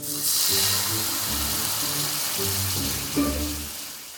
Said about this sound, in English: While the shallots were frying in the wine